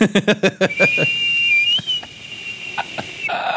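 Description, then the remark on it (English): A voice imitates the whistling turbo of a car with a pull-to-start and four exhaust pipes: a quick run of rhythmic puffing bursts, then a high, steady whistle held for a couple of seconds. “It's got these two things pumping in the background. Four exhaust pipes. It just whistles the whole time.”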